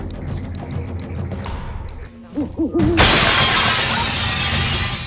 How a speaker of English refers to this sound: God, it's a classic case of drive-by hooting. Three. So, aside from the owl crashing